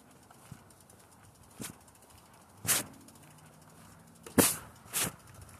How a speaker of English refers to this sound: I'm recording this without talking with people actually just listening to the sound of the ticks coming from my bike.